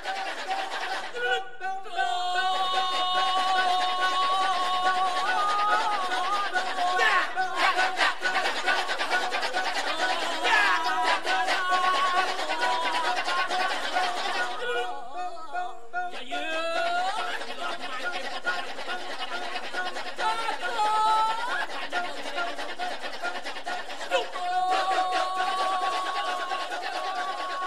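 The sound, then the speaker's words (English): A large group of voices performs a monkey chant: dense, rapid, interlocking percussive vocal calls with sustained sung tones weaving through, loud and continuous, with short breaks near the start and midway. “You could get a room of 50 people doing the monkey chant in probably like 10 minutes.”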